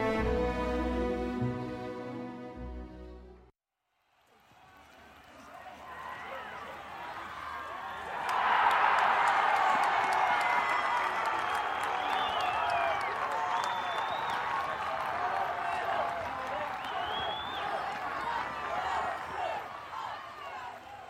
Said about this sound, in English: The crowd exploded raucously, bellowing their approval as Bushel's strike hammered into the opposition post. Hands held tightly to her ears, face split by a huge grin, Cammy turned to face Amber. It's so much louder than I thought!